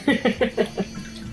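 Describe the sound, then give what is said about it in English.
Bathwater sloshes in a bathtub in about five quick, rhythmic surges, fairly loud, then settles into a quieter watery wash at the end, as a person in the tub gets ready to drain the water. “I hope that you'll come hang out in the tub with me again for our next episode”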